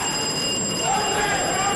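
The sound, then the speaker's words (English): A contestant's bell, rung by the Presbyterian boys' team in a riddle-solving quiz round, rings continuously for under two seconds, a steady, high, metallic tone held at even loudness over a low murmur of background noise. “When you are ready to solve the riddle, you must attract my attention by ringing your bell.”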